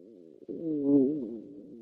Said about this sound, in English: That sounds like your stomach growling, sis. That scared the shit out of me.